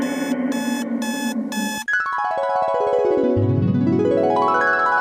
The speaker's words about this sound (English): Okay, that sounds like the awful sound of an alarm. The awful, awful beeps are bringing you away, and I'm fading into nothing like a half-forgotten memory.